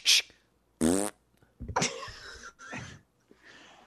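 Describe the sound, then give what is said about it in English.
A series of loud farts in quick succession, some short and breathy, others longer and buzzing or sputtering, with brief pauses between them and no talking. “She got so comfortable with farting that she like would.”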